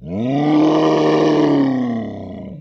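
A giant ape lets out one loud, deep, sustained roar, close and rumbling, holding steady for about two seconds before trailing off. No talking.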